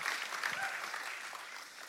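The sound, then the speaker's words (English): An audience claps their hands for their senior pastors in a steady, dense wash of applause, sustained at an even level for a couple of seconds, with no voices standing out. “So let's give a hand clap for our senior pastors for doing all that and the vision that they have.”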